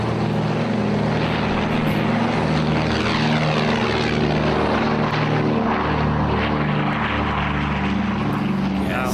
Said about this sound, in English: I think that is a twin-engined aircraft, not the slightly underpowered Tiger Moth, circa 1940.